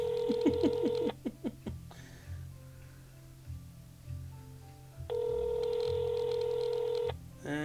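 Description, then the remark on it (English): A phone call being placed: a steady electronic tone, a few quick dialing beeps, then quiet before a long, even ringing tone sounds, all over a low, pulsing hum. “Let's just hang up, and I'll send him a text”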